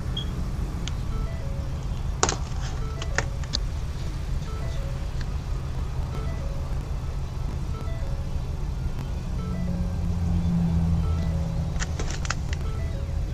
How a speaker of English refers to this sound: There's a tow truck.